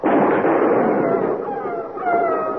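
A loud, booming gunshot fired at a wolf rumbles out at the start, grazing it, and the wolf's long, wavering howl rises prominently through the fading noise.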